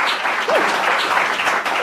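An audience applauds actor Rani, a dense, even patter of many hands clapping at a constant loud level throughout, with a brief voice-like whoop rising above it early on.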